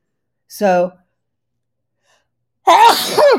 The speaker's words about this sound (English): So I've had a different kind of sneeze lately. And it's a clearing sneeze. I'm not allergic to anything and I'm not sick.